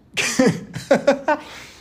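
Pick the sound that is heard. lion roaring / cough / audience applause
cough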